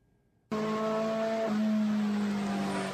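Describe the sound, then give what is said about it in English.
A race car engine on the starting grid suddenly roars to life and holds a loud, steady high-revving drone in first gear, its pitch shifting slightly partway through, continuous with no talking. “Yeah, so my plan was to be in first gear probably at like 5,500, 6 grand RPM, and if I could hold it there before I had to grab second, I could launch at the start.”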